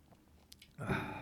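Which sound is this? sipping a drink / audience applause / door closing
sipping a drink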